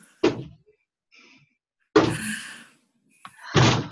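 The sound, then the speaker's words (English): Kids throw objects against a door: three loud, heavy thuds spaced irregularly, each with a short booming decay, plus a faint light tap just before the last hit. No one speaks. “Kids are literally throwing things at the door right now.”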